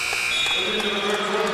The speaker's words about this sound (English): Buzzer sounds after a shot goes awry. It's 40-28 Coldwater over Northview. After three, final quarter in a minute,